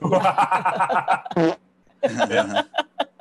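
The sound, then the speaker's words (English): A loud fart sound effect: a long, wavering, squeaky blast, a pause, then a shorter burst and a few quick sputtering pops at the end. “that's can't trust a fart. Leo, give me some shorts.”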